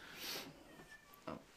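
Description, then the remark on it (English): A cat in a house meows briefly and faintly, a short, thin cry, followed by a soft clunk amid otherwise quiet surroundings with no talking. “There are cats. There are dogs. There are lots of living beings in this house.”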